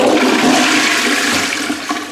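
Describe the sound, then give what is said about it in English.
A toilet flushes in one loud, steady rush of water with a broad hiss that holds for about two seconds and then eases slightly, with some gurgles near the end. “Was it the trampoline, the ice cream maker, or the flushing toilet?”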